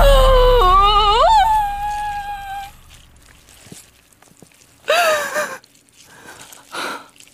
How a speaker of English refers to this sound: …'s wailing in agony.